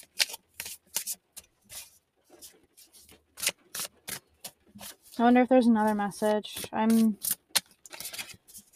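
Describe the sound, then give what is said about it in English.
A deck of cards being shuffled, a run of crisp, irregular snaps and riffles that continue throughout, with a person speaking briefly partway through. “shuffling the cards, so maybe there is.”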